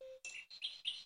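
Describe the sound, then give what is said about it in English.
A modern-looking cuckoo clock with a little bird chirps: a short steady low beep, then a quick run of four bright, high bird-like tweets in a lively rhythm, fairly quiet, with no voices. “He got me a cuckoo clock.”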